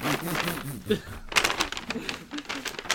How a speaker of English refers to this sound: You can hear it now. It's rustling.